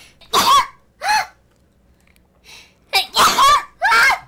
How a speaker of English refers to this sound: What the hell was that? You call that a sneeze? Dude, you sound like a five-year-old.